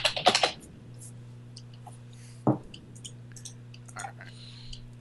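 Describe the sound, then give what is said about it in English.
Clattery keyboard typing by a woman: a quick burst of several keystrokes at the start, a sharper lone tap midway, then lighter scattered clicks over a steady low electrical hum. “Yeah, you can't hear anything above her typing.”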